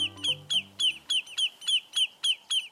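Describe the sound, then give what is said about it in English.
A lesser yellowlegs, a shorebird, gives loud, insistent alarm calls at a threat to its nest, about ten sharp, ringing notes repeated in a steady, rapid rhythm, with faint low tones beneath the first few. “But when the shorebirds called lesser yellowlegs sense a threat to their nest, they'll put up an unforgettable racket to drive the danger away.”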